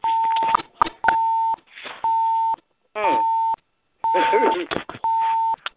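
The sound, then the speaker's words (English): A steady electronic beep from someone's phone on a conference call line repeats about every second, six evenly spaced half-second tones, while overlapping voices murmur and chatter in the gaps and underneath. “Hello, is that someone's phone? Can you probably be muted?”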